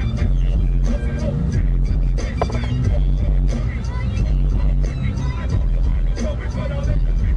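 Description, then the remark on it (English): A steady engine and road rumble from a car driving along, filmed from inside the car in a skater video, continuous and fairly loud throughout, with faint indistinct voices mixed in underneath. “I kept thinking he was going to get hit by this car that we were watching from.”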